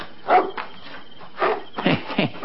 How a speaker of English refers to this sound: Darn if I can see anything for you to be barking at. There's nothing out there, boy. Seems like you're barking at something up that tree. There's no cats around here.